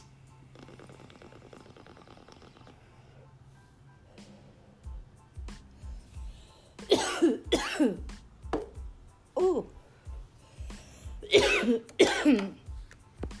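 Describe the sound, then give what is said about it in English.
A harsh coughing fit after smoking strawberry shortcake comes in two bursts of rapid, raspy coughs separated by a short pause, following a quieter stretch of low crackling and shuffling. “It got into your system if you cough that fast.”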